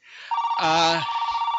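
A telephone rings with an incoming call from someone calling back, a steady electronic tone that starts after a short pause and holds to the end, fairly loud, with a brief voice-like sound over it.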